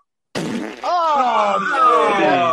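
A long, loud, buzzing fart sound rasps for about two seconds, its pitch wavering up and down, close by and alone with no talking over it.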